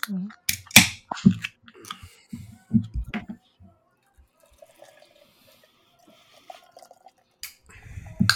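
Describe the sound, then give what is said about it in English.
A sharp metallic crack and pop of a lager beer can tab opening, followed by a soft, quiet fizz, with a man talking before and after. “Well, I'm going to crack mine now.”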